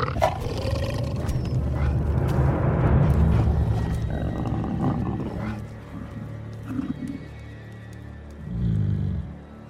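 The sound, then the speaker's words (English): A pack of wolves encountered by Arya growl and snarl together, a deep, continuous rumbling that swells loudly through the first few seconds, eases off, then surges again in a short burst near the end. “It doesn't quite happen like this, although after she's been to Braavos and comes back, she does have an encounter with a pack of wolves, and when she sort of has that reunion with Nymeria.”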